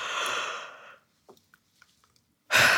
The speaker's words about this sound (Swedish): Innan man går och sätter sig i det här rummet där man ska bli intervjuad, så är det bra att man går iväg en stund till närmsta badrum och faktiskt gäspa lite. För gäspningar får en att slappna av. Testa själv nu bara.